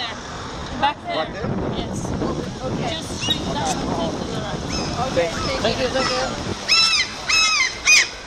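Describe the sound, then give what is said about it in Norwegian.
Small birds in Kølåsparken call outdoors after being thrown bread crusts, over steady wind and traffic-like rumble, with a few faint voices. A burst of sharp, nasal, honking calls rings out toward the end. “Det som skjer nå at vi endelig I Kølåsparken og har kastet noen brødskorper på noen småfugler der.”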